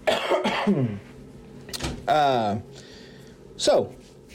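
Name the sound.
cough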